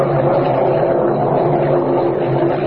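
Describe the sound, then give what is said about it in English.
A hailstorm beats steadily outside, a dense, unbroken roar of rushing noise with a low rumbling undertone that stays loud and even throughout, with no voices. “Kent, listen, that hailstorm is still going on.”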